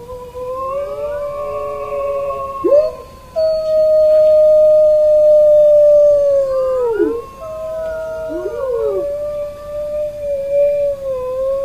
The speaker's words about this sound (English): Wolves make the same sound as our pet dogs. Wolves can growl, whimper, whine, and bark. They are most famous for the howling. Can you howl like a wolf?